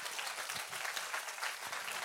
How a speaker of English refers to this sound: If you believe it, you can give him a hand clap today.